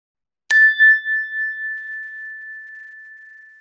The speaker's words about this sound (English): We'll begin this meditation like we always do with the ring of the chime and end the meditation with the ring of the chime.